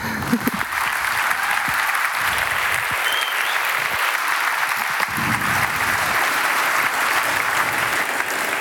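Loud, sustained audience applause fills the whole stretch, a dense steady wash of many hands clapping at even strength with no voices rising above it.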